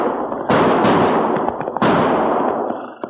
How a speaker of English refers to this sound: Geronimo's ghost, Chad. Did you hear what I heard? Not only did I hear those gunshots, Cherokee, but now I can see where they came from. Hey, look over there. See that smoke rising just over the roof of that hay barn?